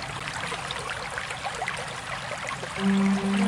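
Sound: water running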